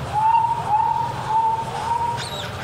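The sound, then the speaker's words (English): A person whistles an imitation of a sparrow call: four steady, mid-pitched notes with slight upward slurs, evenly spaced, ending in a brief higher chirp, with no talking and faint low background noise. “You know, get out there and do the sparrow.”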